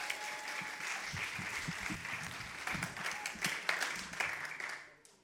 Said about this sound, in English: Amazing. Can we give those guys another big, massive round of applause?